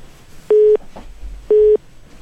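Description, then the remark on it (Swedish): Two loud, steady telephone busy-tone beeps, each about a quarter second long, spaced a second apart over a quiet line with faint background hiss, heard after a phone call is rejected by the person being called. “Tryckte han bort oss där? Ja, det gick för många signaler.”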